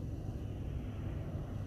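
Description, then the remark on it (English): A steady, low engine rumble with road noise fills the cabin of a car moving in traffic, holding an even, continuous drone throughout with no voices or distinct events. “And of course, I'm in traffic,”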